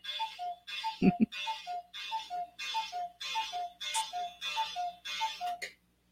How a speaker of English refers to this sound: 11 o'clock almost. It's a little fast now. It was behind. Crazy clock. 11 o'clock, but it's crazy.